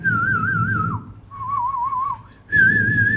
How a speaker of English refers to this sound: And you hear all this whistling. A kid sees an army jeep, he starts whistling, another kid whistles, and everybody knows the jeep is coming, and they all scatter.